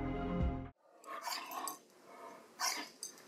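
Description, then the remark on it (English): A debarked dog (vocal cordectomy) gives a muffled bark: a low, throaty opening yelp followed by a few breathy, raspy huffs in uneven bursts, with no talking. “This is what a debarked dog sounds like.”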